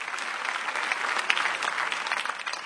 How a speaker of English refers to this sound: As you keep clapping unto the Lord, I see you receiving your visa to all nations.